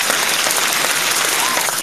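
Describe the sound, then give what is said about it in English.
A crowd applauds, dense and loud, with many hands clapping in a steady, continuous wash of noise that cuts off abruptly at the end. “I ain't gonna lie, that sound like a real crowd, goddamn it.”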